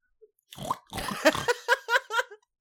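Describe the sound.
A person imitates a pig: a rough, snorting grunt followed by a quick run of four squeaky, rhythmic oinks, fairly loud, with no talking.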